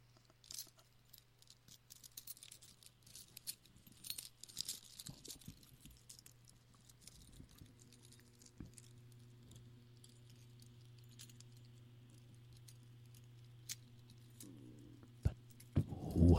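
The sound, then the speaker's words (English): Keys jangle and scrape as they are dragged across a surface, a quiet, irregular metallic rattling over a steady low hum, growing louder with a few sharper clinks near the end. “And it sounds like that the keys are dragged around.”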